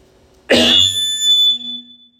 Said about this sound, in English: Forgive me for coughing. But as now that we are all awake, and I still feel like I need a cough,